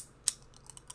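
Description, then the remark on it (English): A can of ice-cold Dew soda being cracked open: a sharp, bright click, a few faint ticks, then a loud hissing snap at the very end, with no talking. “And yes, that is the sound of me cracking open a sweet ice cold dew.”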